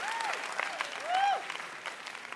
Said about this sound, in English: Round of applause for Sean, our contestants, and our VIP, Mike Rugnetta. Thank you, Mike.